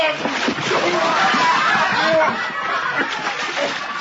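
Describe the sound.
A heavy splash as a man is thrown into water to cool him off, followed by churning, sloshing water that fills the whole moment, with voices and some chuckling mixed in.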